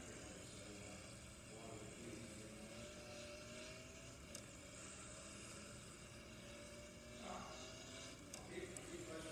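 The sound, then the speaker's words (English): A video game race car engine hums steadily throughout, its droning pitch gliding up and down over a dense, continuous rumble, with muffled voices from a call faintly underneath. “I just need to get my car back running.”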